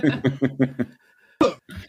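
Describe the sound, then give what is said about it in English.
A quick run of short, voiced, chuckle-like bursts, then a brief pause and two sharp, close coughs, fairly loud, with no talking. “I'll take that up, …, while you cough.”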